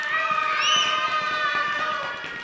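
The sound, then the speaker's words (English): A group of children scream together on cue, acting out running away from a giant in a told story, in one sustained, high-pitched chorus, their overlapping voices holding steady and loud for a couple of seconds before tapering slightly at the end. “Okay, scream on the man.”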